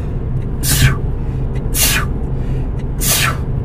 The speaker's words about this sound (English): Oh, sneezes are gross. I'm sorry.